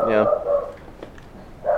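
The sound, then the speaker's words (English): Several short, harmonic barks from dogs in the background, coming in separate bursts at the start and end with a sharp brief sound between them. “Hear some dogs barking in the background.”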